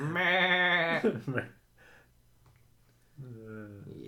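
A goat bleats loudly in a long, wavering cry, then after a quiet pause lets out a second, shorter bleat.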